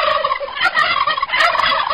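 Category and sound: bird, turkey gobbling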